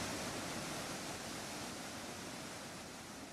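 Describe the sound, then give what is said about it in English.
A steady, dense rush of water pours continuously as a tank fills from a strong inflow, a broad hissing roar that holds constant throughout with no voices. “Madame Zetzner closed her eyes and gripped the metal bars of the device, remaining perfectly still as the water came up to her waist.”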